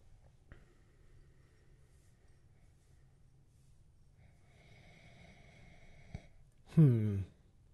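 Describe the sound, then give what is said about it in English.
A quiet stretch of room tone with a faint hum, then one short, loud sniff through the nose near the end, almost a snort, as someone smells a beer with a boozy, barley wine-like aroma. No one speaks. “See, this is what I was expecting from the first one, where I was expecting a more saturated aroma, a little bit of booziness, you know, and the first sniff off of this one is barley wine-like.”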